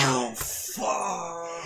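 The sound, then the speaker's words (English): A single loud sneeze: a brief voiced intake, then a sharp hissing burst, trailing into a drawn-out vocal groan. No talking alongside it. “Bless you. Thank you.”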